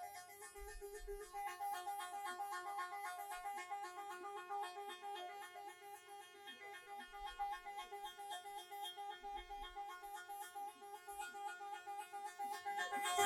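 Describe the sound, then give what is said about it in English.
The loud, sustained musical horn of the UAE team bus blares continuously for over ten seconds among the team buses after a cycling race, its steady multi-tone chord unbroken, with no talking. “That was the UAE bus.”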